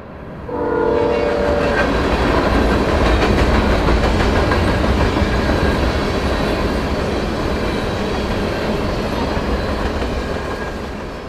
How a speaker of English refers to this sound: Another train.